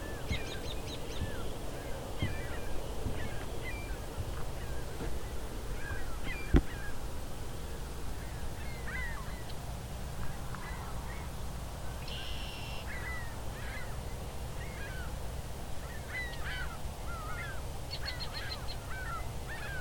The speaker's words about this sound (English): Ring-billed gulls.